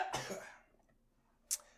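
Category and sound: human body sound, hiccups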